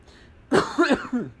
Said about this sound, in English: So, okay. Coughing a little bit. Not doing too bad. Not coughing very often.